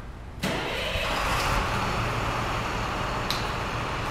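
A large refueling truck engine abruptly cranks and catches, then settles into a loud, steady diesel rumble, running continuously for several seconds with no voices.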